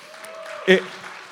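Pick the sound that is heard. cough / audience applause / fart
audience applause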